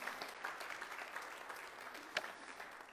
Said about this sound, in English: Can somebody give Jesus a hand clap of praise? Give him glory.